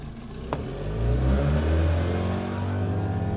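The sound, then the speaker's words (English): A boat motor drones steadily out on the water near the Berkeley Pier, its low engine hum swelling briefly as it revs, with a faint click near the start and no voices over it. “Together, they climbed onto a boat and went out on the water to take a closer look.”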